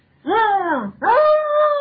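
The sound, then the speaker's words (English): A dog, Buffy, squeaks twice with loud, tonal whines. The first arches up and slides down in pitch, and the second rises and then holds a steady high note. No one speaks. “That's not her squeaking in the background.”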